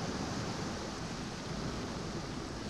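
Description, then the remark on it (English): A steady, soft wash of ocean waves running over sand, a continuous hiss of surf without distinct breaks, fairly quiet and unaccompanied by any voices. “Listen to the rhythm waves flow over the sand.”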